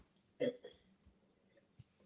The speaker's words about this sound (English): Sorry about that. I had to take a sip of water because my throat just felt really dry